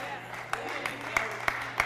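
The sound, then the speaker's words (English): A few scattered hand claps during a sermon, about five sharp smacks spaced evenly at a steady pace, rising above a low, constant background hum with no one speaking. “The reason why I only got 3 claps on that is because, see, we like to value the outside because the outside gives us control.”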